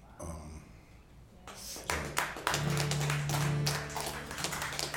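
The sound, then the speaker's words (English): After a quiet opening, audience applause breaks out and swells into steady, dense clapping that holds to the end, with a low sustained hum running underneath for a stretch. “Really not applause necessary, just needed to be done.”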